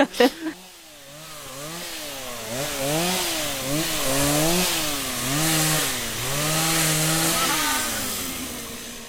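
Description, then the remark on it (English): A chainsaw runs steadily, its engine pitch repeatedly dipping and surging as it bites into wood, after a few sharp knocks at the start; drivers are cutting through trees to clear a path for their 4x4 vehicles. “The guys who were driving us had to regularly get out with chainsaws and machetes to clear the path.”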